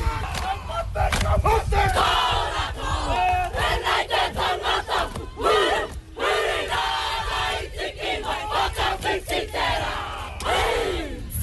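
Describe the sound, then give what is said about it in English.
A Kapa Haka group performs a haka welcoming someone to the finish line, with school kids, policemen and the local community gathered. Loud rhythmic chanting and shouting voices in unison with sharp percussive slaps and stamps punctuating the cries throughout. “I just had my very first haka, which is an incredibly emotional experience.”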